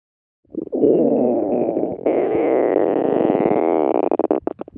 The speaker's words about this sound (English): Do you know what sound this is? Shout it out. A stomach rumble. A stomach rumble.